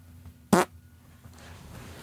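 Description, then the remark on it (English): A single short, loud fart bursts out, a quick raspy blast lasting a fraction of a second, followed by a low background hush with no talking. “Oh, if it was like the one you did earlier, it smelled like a fucking baby's diaper.”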